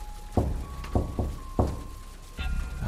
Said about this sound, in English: My thoughts were interrupted when we heard a knocking coming from outside the lab door.